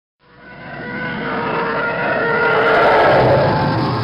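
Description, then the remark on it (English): A Star Wars TIE Fighter engine effect: a loud, sustained roaring scream that swells in from silence and holds steady, with harsh tonal bands layered over a rumbling, gritty texture. “This is, if you're not familiar or if you just can't recall how a TIE Fighter sounds in Star Wars, this is how a TIE Fighter sounds.”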